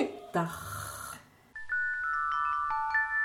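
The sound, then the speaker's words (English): A person imitates a snore with a short, raspy, throaty inhale, fairly loud, followed by a few clear, steady ringing tones that sound like chimes. “And everybody, I think everybody is able to produce this snoring sound.”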